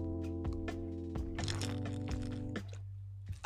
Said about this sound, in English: Let me drink some water.